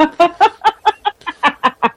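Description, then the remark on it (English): A chair squeaks over and over in a quick, steady rhythm, about nine sharp creaky squeals in two seconds, fairly loud with no talking. “I'm waiting for a pay raise from my boss so I can afford a chair that doesn't squeak.”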